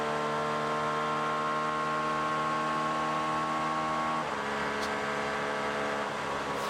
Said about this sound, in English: Very different engine sounds, much higher revving, the 2.6 V6 Acura.